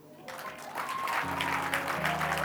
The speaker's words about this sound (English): Please, whilst we're standing, I want us to give a round of applause to the host with the most, my wife.